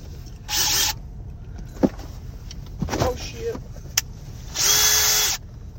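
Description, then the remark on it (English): Two short, loud bursts of a Craftsman power impact drill whirring as it breaks loose an oil pan bolt with a 15 millimeter socket on an adapter, separated by a few seconds of quieter clanks and faint mumbled voices. “That sumbitch broke the bolt loose.”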